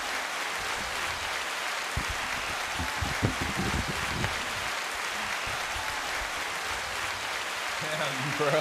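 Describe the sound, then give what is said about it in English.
A recording of crowd cheering and clapping, played in a studio, holds as a steady, dense roar at an even level throughout, with a few lower voice sounds breaking through in the middle. “Oh, all right, turn the fucking cheering off.”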